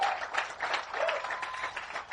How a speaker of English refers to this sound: All right. Go back to it. Keep on clapping for them.